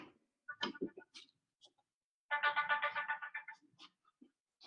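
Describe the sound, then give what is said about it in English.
A phone ringtone plays a quick, bright electronic melody in short bursts, first briefly and then a steadier run of rapid repeating tones, fairly quiet, with no talking. “just a second, Tadia, I have to turn off my phone”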